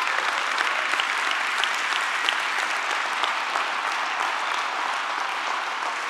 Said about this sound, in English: Okay, you're clapping.